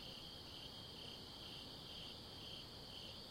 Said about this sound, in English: So first off, I hope you can hear the sounds of the night. Can you hear that? I think they're crickets. I don't know what they are. Yeah, I'm pretty sure they're crickets.